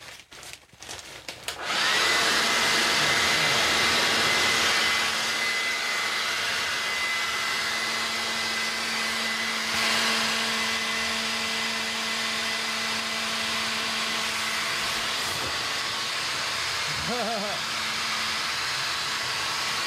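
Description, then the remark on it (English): A leaf blower kicks on after a couple of seconds and keeps running, a loud, steady roar of rushing air with a constant motor whine underneath. “is scared of the leaf blower from when I gave him showers.”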